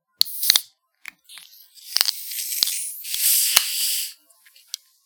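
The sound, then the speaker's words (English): Bottles of Faygo cream soda and root beer are cracked open with several sharp clicks and snaps, followed by a steady, bright hissing fizz that swells for a couple of seconds and then dies away, with no one talking. “Cream soda and root beer are two of the most immediately volatile drinks in the carbonated beverage.”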